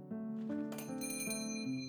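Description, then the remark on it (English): A small bell over a shop's front door rings several times in quick, uneven succession as a customer arrives, its bright metallic tones overlapping and lingering, clear with no voices. “A short time later, she heard the ringing of the small bell over the front door, signaling the arrival of a customer.”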